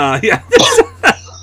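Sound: coughing and throat clearing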